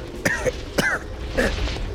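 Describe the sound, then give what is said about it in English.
Three harsh, wet coughs in quick succession, fairly loud, with a strained, throaty quality and short gaps between them, as someone on horseback coughs up blood. “You try to call out to her, but instead you just end up coughing up a bunch of blood on the back of your horse.”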